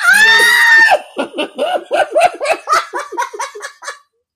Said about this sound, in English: I have to stop screaming on the podcast. I promise going into 2022, I would not do that anymore.